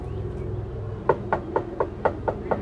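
After a second of low background hum, a reporter knocks on a door seven times in a steady, even rhythm, each knock a crisp, moderately loud rap.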